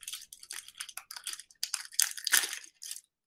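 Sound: chewing food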